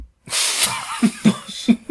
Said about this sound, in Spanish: Tos.